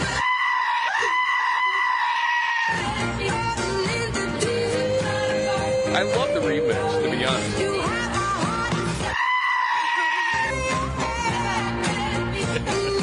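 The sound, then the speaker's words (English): Loud goat screams wail repeatedly over a driving song with heavy bass and layered music, the bleats stretching into harsh, strained cries near the front of the mix; a brief spoken comment is also heard. “these people are going to be screaming at her like goats or something”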